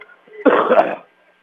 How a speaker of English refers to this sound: Excuse me, like I said, a kind of couple sniffles, a cough here and there. Several days ago, started getting sick